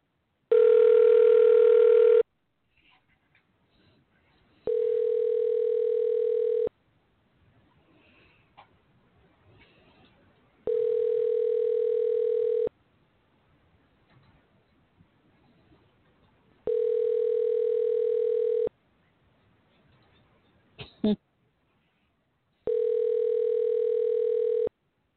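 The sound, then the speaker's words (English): An outgoing phone call placed on a switchboard rings on the line: five steady ringback tones, each about two seconds long, separated by pauses of quiet line hiss, with no one speaking. “I haven't made an outbound call on the switchboard in so long, I almost forgot how to do it.”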